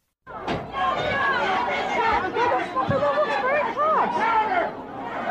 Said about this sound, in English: In this video that you're about to hear, a store manager stands up on a table above a screaming crowd, throwing cardboard boxes into the sea of people the way a bride might throw a bouquet.